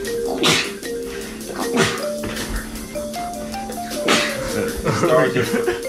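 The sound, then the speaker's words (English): Loud, explosive sneezes burst out one after another, about three in a few seconds, with a low steady background hum running underneath. “Those were epic sneezes.”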